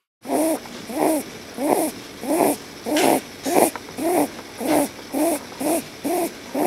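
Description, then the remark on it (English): An animal snores in a quick, steady rhythm, about eleven raspy, wheezing breaths in a row, each a short hoarse, hooting puff with a hissy edge, and no voices. “So let's go to snore five.”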